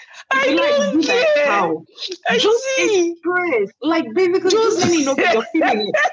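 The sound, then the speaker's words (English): A person imitates a goat, letting out a run of loud, wavering bleats with shaky, quavering pitch and brief gaps between them. “If you like, bleed like a goat.”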